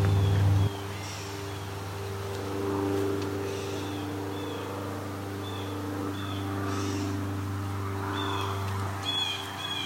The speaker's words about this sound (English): That's a blue jay.